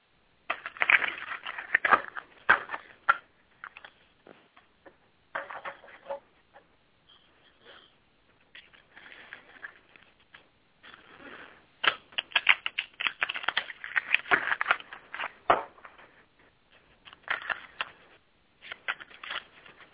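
A deck of cards is shuffled for a reading, with crisp riffling bursts and flicks coming in uneven clusters, separated by short pauses, with no talking.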